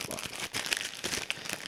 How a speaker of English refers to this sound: Oh, oh, just, how do you open this? Oh, really hard to open plastic bag.